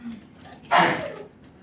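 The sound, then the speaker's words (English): A woman in a sermon audience sneezes once suddenly, a sharp, breathy blast that fades over about half a second, standing out against an otherwise quiet background with no talking. “Bless you.”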